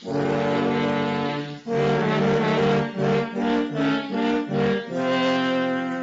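Three French horns play the wolf's menacing theme in loud, low chords: a long held note, a swell, a run of short punchy notes, then a final sustained chord, with no voices.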